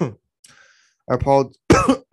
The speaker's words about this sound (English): I apologize. I have a little bit of a cough here. I got sick after watching that game.